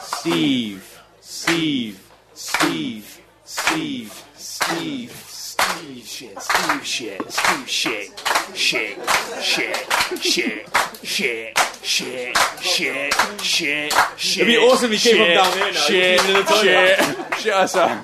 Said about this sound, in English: We were doing clapping.